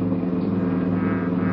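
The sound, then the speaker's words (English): A police cruiser car's engine hums steadily as it drives in steady rain after 1 a.m. during a manhunt, cruising the area between East 3rd and College Streets and Alameda and Figueroa; a continuous low rumble with an even tone and no voices. “For the first 30 minutes, Ben and I cruised the general area between East 3rd and College Streets and Alameda and Figueroa.”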